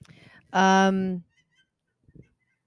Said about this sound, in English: So there's been a lot of geese flying south. I hear them right now. It's been happening every night.